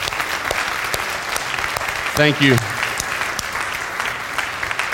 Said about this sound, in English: I know this makes them uncomfortable, but if you're a musician or a singer here at Whitestone, could you just stand up right now? Can we give these dudes a big round of applause?